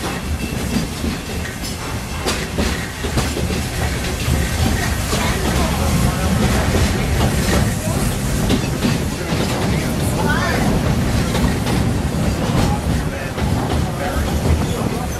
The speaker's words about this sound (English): As for me, I'll stay safe and sound right here aboard my train, if you don't mind.